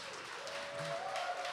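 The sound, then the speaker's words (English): A church audience applauds its kids team volunteers as they stand, a soft, steady wash of many overlapping claps, with a faint sustained tone running underneath and no one speaking. “In fact, if you have served in kids over the past year, I would like, I mean, you're probably not going to like what I'm about to say, but just would you stand up, please? Could we clap for you?”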